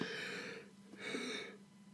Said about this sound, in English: Here I go, yawning again.